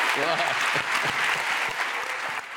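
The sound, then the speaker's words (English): Sustained audience applause for Professor Muhammad Yunus after his conversation with Chelsea Clinton, a dense crackle of many hands clapping at once, loud and steady throughout, with a faint voice briefly audible beneath it near the start. “Please, though, give Professor Yunus a tremendous round of applause.”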